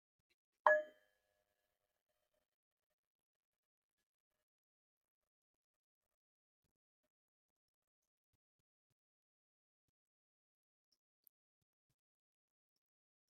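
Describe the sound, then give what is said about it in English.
A single meditation bell is struck once to start a guided meditation, a clear bright ding near the start that fades quickly, followed by a long stretch of near silence. “I'll start with a bell and then we'll begin.”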